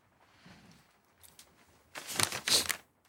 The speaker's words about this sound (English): Nope, just paper flipping.